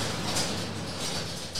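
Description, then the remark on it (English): A thin aluminium door rumbles along its track as it's slid shut, a steady raspy scraping that lasts under two seconds at moderate volume, with no talking. “I don't think that thin aluminium door will stop too much, but it might anyway.”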